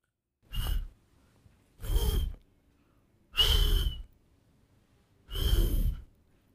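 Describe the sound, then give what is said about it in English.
Four breathy puffs of air blown by a girl through rounded lips with her tongue behind her teeth, evenly spaced, each a soft hissing rush with only a faint hint of a tone, like attempts at whistling that never catch. “and then she put her tongue behind her teeth and blew.”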